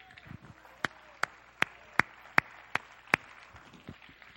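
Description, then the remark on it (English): An audience stands and claps hands to the Lord in praise, about seven sharp, evenly spaced claps in a steady rhythm, rising above a soft wash of background crowd noise. “Would you stand up and clap your hands to the Lord, and would you give him praise right now?”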